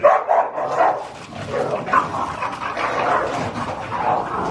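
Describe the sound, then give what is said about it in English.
Two dogs bark and yip excitedly as they get ready to fight, their sharp barks overlapping in a steady, agitated stream with whimpering mixed in over a noisy background. “This CNN exclusive video, evidence from a close case, shows two dogs getting ready to fight.”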